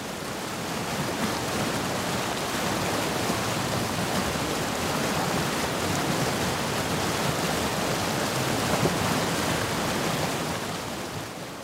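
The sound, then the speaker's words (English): River water rushes and splashes off rocks on the river bottom and in small cascades in a steady, dense roar, with a fine churning texture throughout, fairly loud, and no voices. “The more subtle sound of water splashing off those rocks.”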